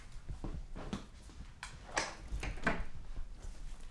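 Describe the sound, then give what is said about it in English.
Handling noises as a vest is put on a dog named Chutney: soft rustling with several sharp clicks and scrapes, like buckles fastening, spread unevenly over a few seconds with no talking. “This is what it sounds like to put the doggy's vest on.”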